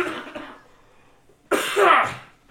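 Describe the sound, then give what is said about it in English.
A person clears their throat roughly, then after a short pause lets out a sudden, loud, harsh cough; no talking. “God damn it, …, you're already infected”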